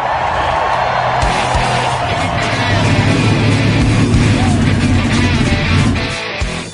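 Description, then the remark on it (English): A loud, dense roar of several race car engines firing up and revving together, their low droning pitch climbing steadily over nearly seven seconds before easing slightly at the end. “Sirs, start your engines!”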